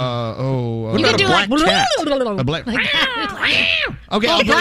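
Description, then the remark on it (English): A person's voice imitates a black cat, letting out a run of loud, drawn-out meows and yowls that rise and fall in pitch, one after another without pause. “I'll play the black cat.”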